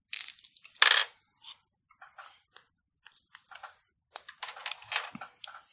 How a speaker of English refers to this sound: All right. I'll roll my dice pool.